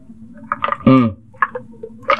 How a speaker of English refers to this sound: Just getting a sip of my iced tea